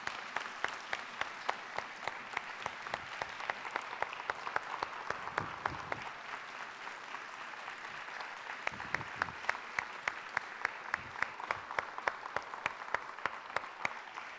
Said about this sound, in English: so first off, I just want to give her a round of applause for all she's done for us.